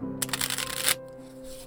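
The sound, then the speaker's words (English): A hired magician riffle-shuffles a deck of playing cards: a dense, crisp burst of fluttering clicks for about three-quarters of a second, then a softer settling rustle over a steady low hum. “William pulled a card from the deck.”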